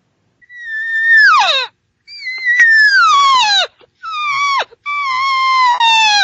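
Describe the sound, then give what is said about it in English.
A hunter blows a cow call, trying to call him over: four loud, drawn-out mewing wails, each sliding downward in pitch, separated by brief pauses, with no talking. “I'm going to try to call him over with my cow call.”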